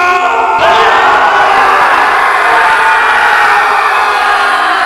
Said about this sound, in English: Okay. You hear like the rebel yell of the pirates.